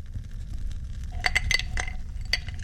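Handcrafted resin dice clink and rattle against a glass in a quick cluster of bright, ringing taps, by a fire, over a low rumbling background with no talking.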